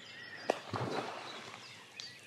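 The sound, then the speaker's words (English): A beaver smacks its tail on the water of a pond in a beaver enclosure in the UK: one sharp crack, then a short burst of splashing that quickly fades. Faint bird chirps sound quietly in the background. “That was the beaver slapping its tail down.”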